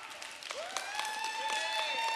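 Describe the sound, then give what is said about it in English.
Thin, scattered audience applause, a modest patter of claps at low volume, with a steady sustained tone starting partway through and holding underneath. “Thank you for that weak applause.”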